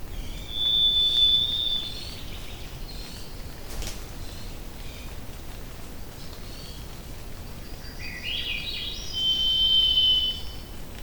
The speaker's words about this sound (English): And so I've got these really pretty recordings of like a million raindrops hitting these deciduous trees and mostly cottonwood and birch trees, and then this Swainson's thrush that's just singing in the rain. I really love those recordings.